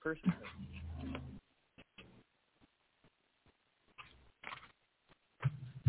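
dog whimpering

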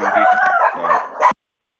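small dogs barking

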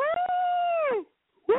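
yawning

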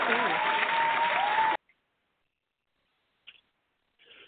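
applause

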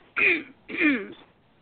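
throat clearing and coughing

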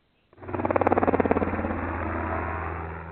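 helicopter flying overhead

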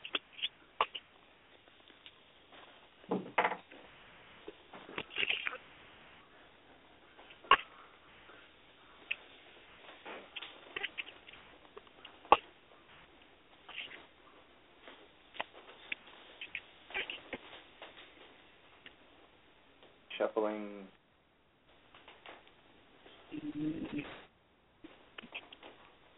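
shuffling cards

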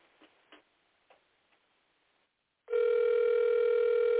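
phone call ringing

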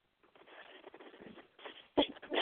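sneeze

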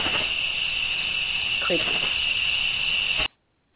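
crickets chirping

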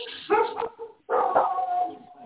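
dogs barking and howling

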